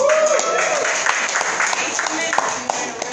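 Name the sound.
crowd cheering and clapping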